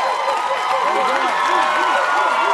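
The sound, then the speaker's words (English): A studio audience cheers loudly and steadily, doing the dog pound chant on a late-night talk show with a rapper, a rhythmic, repeated whooping chant rising and falling in pitch over a continuous crowd roar. “He's doing the dog time. Pound thing. You hear the hell of back there?”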